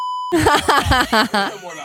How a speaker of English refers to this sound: Let's go to that buzz button.